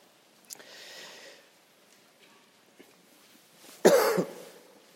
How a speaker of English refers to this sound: So, we did all right during the first service, but I might have to pause and cough a little bit, preparing you for that.